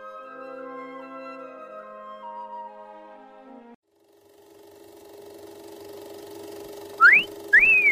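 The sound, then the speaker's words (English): A loud two-part wolf whistle in appreciation of the hot dogs at a concession stand, a quick rising sweep followed by a second rising-and-falling note, cuts in near the end over a steady mechanical hum that follows a stretch of sustained tones. “Yes, sir, the hot dogs at our concession stand do rate an appreciative whistle.”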